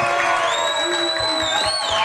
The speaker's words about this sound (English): Yeah, I can't tell the difference at all. That was the fake crowd.